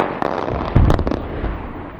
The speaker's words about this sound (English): And guess what? The blasting is happening all over again.